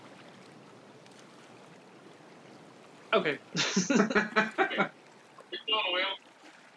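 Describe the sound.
A voice imitates a boat propeller to get a little boat going, with a fluttering, sputtering burst of about two seconds, fairly loud, followed by a brief spoken word.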